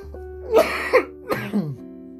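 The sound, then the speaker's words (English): Several harsh coughs from a person after smoking weed, in quick succession: a pair of loud hacks, a brief pause, then a raspier cough trailing into a throat-clearing rasp, with a steady low hum underneath. “I'm over here fucking still coughing.”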